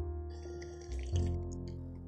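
A quiet, wet slurping sip of hot coffee rises out of a steady low hum about halfway through, then trails off into soft liquid sounds. No one speaks.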